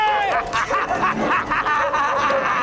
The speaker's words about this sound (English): You thought you would get me, you feeble-minded mongrel! Stupid, stupid doggy! Never! You'll never get me!